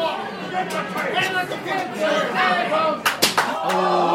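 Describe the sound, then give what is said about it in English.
A few sharp, loud slaps ring out in quick succession near the end, open-hand wrestling chops smacking a bare chest during a wrestling match, over a steady murmur of crowd chatter and voices. “Mega chop. You can hear that into my headphones.”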